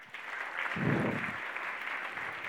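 A crowd applauds steadily for a couple of seconds, a dense wash of many hands clapping at once, moderately loud, with no one speaking.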